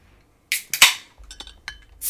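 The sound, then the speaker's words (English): A beer can cracks open with a sharp metallic snap and a quick fizzy hiss, followed by a few light clicks and taps and a final short burst of hiss. “Oh, yours sounds like a can. Mine was a can.”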